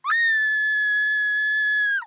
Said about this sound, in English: That screaming was giving me a headache.